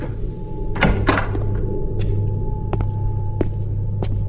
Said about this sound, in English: Well, first I'm going to open the door.